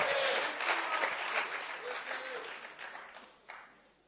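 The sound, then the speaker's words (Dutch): A crowd applauds the band after a worship set, a dense wash of many hands clapping that holds for several seconds, then thins and fades toward the end, with a brief voice or two underneath. “Kom, geef ze een applaus. De band.”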